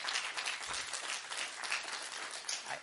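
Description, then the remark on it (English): Audience applause after a prayer: a dense, steady wash of many hands clapping at once, sustained at an even, moderately loud level throughout with no voices over it. “Yeah, you can applaud right now because I don't know.”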